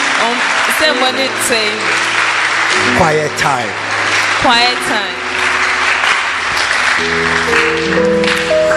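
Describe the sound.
A steady wash of audience applause, dense and fairly loud, continues throughout while a man speaks over it.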